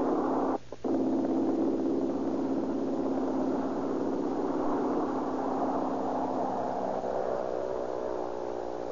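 A small red airplane's engine drones loudly and steadily, briefly cutting out near the start, then its pitch climbs gradually as it revs up for takeoff, climbing to 1,000 feet over Southern California.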